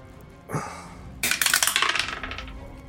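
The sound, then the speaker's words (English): Dice clatter onto a hard table with a sharp burst, then tumble through a quick run of rapid clicks that fade as they settle, showing a total of 19. Fairly loud, with no voices. “That's a 19 on the dice.”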